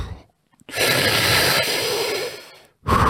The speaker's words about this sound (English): Let's do a few oral breaths. Let's do 3 oral breaths together, all the way in and all the way out. Make sure you are breathing all the way in now. Not half a breath, a full breath. Let's do one more.